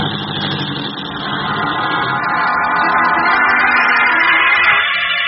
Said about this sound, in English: As the taxi bearing Lois Lane drives off, Clark Kent ducks into a narrow space between two buildings.